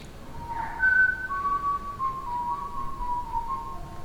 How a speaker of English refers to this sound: she started whistling the Bach Little Fugue, which is her favorite song right now